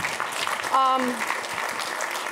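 A crowd claps steadily throughout, a dense, even patter of many hands. A brief tonal cry or whistle rises above it partway through.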